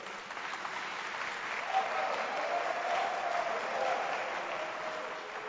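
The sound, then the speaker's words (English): An audience applauds, a dense, steady wash of many hands clapping at once that holds at an even loudness for the whole stretch, with no distinct voices standing out. “Clap your hands for me.”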